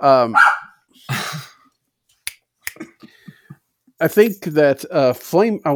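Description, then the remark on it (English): A dog barks at something it has seen, in short bursts: first a couple of loud yaps, then, after a pause with a few sharp clicks, a rapid run of barks close together. “My dog has seen something.”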